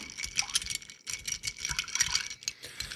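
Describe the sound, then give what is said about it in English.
Ice clinks and rattles continuously in a mixing glass as a cocktail of Rittenhouse rye whiskey and Peychaud's bitters is stirred, a bright, steady jingling with no talking. “And give that a good stir.”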